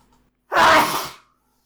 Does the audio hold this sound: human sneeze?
yes